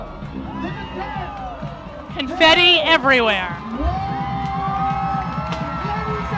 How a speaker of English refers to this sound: The first riders with their fists in the air. Oh, yes. With their fists in the air and coming into camp. Hear that crowd.